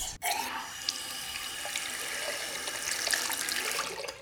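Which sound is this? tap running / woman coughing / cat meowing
tap running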